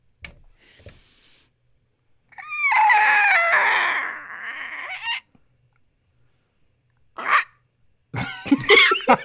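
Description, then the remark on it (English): A voice imitates a creaking door as a sound-effect turn in a game round, with a long, squeaky, wavering high-pitched whine lasting a few seconds, followed by a short breathy burst and a final run of rough, chirpy vocal noises. “Your sound effect is door.”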